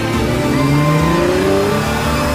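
A car engine revs up loudly and pulls away, its pitch rising steadily as it accelerates, with no voices, as the Joker and his goons drive off in it.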